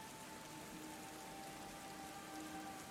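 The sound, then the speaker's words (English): Heavy rain pours steadily onto a cobbled street at night, a dense, continuous hiss of drops with no letup, heard alone without voices. “You step to one side as a cluster of drunken revelers stagger down the way, arm in arm, their cheer not dampened in the slightest by the rain, which you've noticed has well and truly graduated from a mist to a deluge.”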